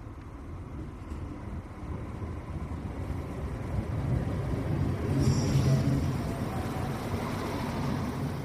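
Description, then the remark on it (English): A train rumbles in at a station, its low, steady roar swelling a little as it approaches, with a horn beeping and a brief high metallic squeal partway through. No voices are heard. “So we're just waiting on the train to come.”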